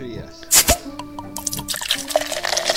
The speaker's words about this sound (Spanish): Algunos ya de vacaciones, destapando como yo, algunas cervezas bien frías.